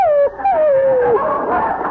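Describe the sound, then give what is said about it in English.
A confused dog, upset by a train trip, whimpers in high, drawn-out whines that slide downward, broken by a brief pause, then trails off into softer yipping and whining sounds. “Nice doggy.”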